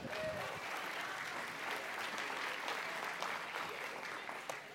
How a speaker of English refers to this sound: All right, y'all give the winners a hand clap.